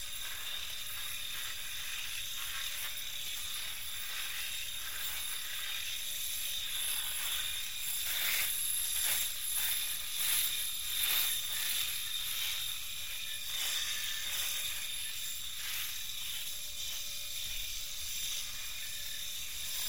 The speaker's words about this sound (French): Voici le premier enregistrement que j'ai réalisé, un rasoir électrique. On va couper la barbe. C'est parti.